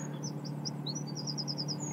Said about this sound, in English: Attenborough Nature Reserve, well, you can listen to the birds. You're a very senses-driven person, I've noticed, and you picked up on the geese flying over earlier and obviously now listening to the sound of the birds.